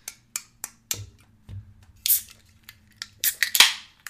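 A beer can being cracked open: a quick run of sharp metallic clicks and snaps, then bright hissing bursts as the tab gives and the fizz escapes, with no one talking.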